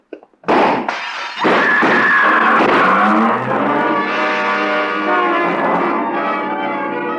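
Two sharp, loud gunshots from a pistol fired out of the window of a double-parked car crack in quick succession near the start, followed by a sustained, humming engine-like drone that carries on to the end. No one speaks.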